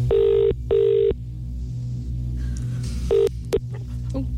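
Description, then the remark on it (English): A telephone ringing tone heard down the line: two steady buzzing rings close together, a pause, then another shorter ring, all over a low background hum. “Here we go. It's ringing good.”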